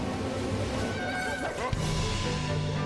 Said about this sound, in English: Oh, it's the Rabbids as Mario characters. Is that what Donkey Kong sounds like?